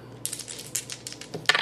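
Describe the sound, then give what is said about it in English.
Three dice roll across a hard surface in a quick run of light, bright clicks and rattles, ending in a sharper clatter as they settle, rolled to try for a better deal. No one speaks. “You can roll if you want.”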